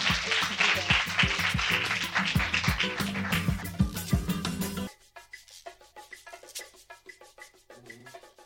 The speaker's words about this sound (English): Can we all please give our panel a round of applause? Thank you so much.